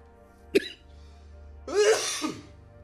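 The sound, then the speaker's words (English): Two coughs: a short sharp one, then a longer, harsher rasping cough about a second later, with quiet background and no talking. “Oh, come on, cough.”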